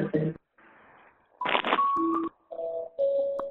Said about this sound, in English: I got somebody with music in the background.